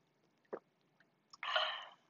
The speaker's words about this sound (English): I'm sorry, my throat's so dry. Let me take a sip. Let me hydrate.